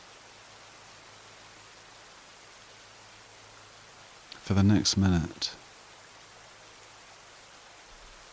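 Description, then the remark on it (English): Steady, even rain hiss fills the whole stretch at a soft, constant level, with a calm voice briefly speaking over it partway through. “The beautiful sound of the rain.”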